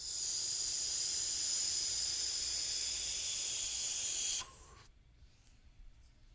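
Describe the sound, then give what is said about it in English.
A long, steady airy draw through a multi-tube vape, breathy hiss laced with high whistling tones, held for about four seconds before cutting off into near quiet. Fairly loud, no talking. “If you breathe, I know, I feel like I'm going to pass out breathing through this thing.”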